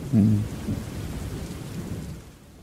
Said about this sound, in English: Let's just enjoy the rain really together. Really calm and nice in here.